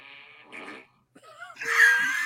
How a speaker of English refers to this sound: No, it's a Google Home, one of the little. That sit on, yeah. I'll be done. Hey, yeah. Google, what does a fart sound like? I did like that. This is a fart.